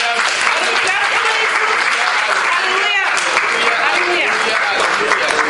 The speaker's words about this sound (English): Let's clap for Jesus.